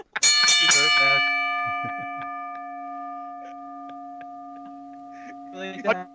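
A bell is struck once at the start and rings on with a long, bright, slowly fading tone, while people talk and shout over it.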